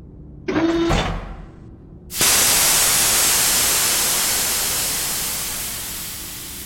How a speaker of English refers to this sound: There is a large explosion sound in the service module.